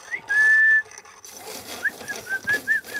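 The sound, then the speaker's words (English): A person whistles one long, steady note, then after a brief pause a quick run of short, chirpy whistled notes, clear with no talking. “They would communicate to each other by whistling.”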